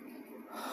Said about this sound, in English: And I'm breathing deeply, as if I'm trying to prepare for a very difficult discussion or a speech.